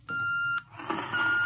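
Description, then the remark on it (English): An intercom call beep from the radio room: one steady, fairly loud electronic tone lasting about half a second, then a hissy, murmuring stretch before a second, thinner tone sounds steadily. “That's the radio room now.”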